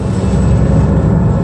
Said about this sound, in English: That private jet carrying a frail Casey Kasem flew northwest from Vegas, landing in Seattle.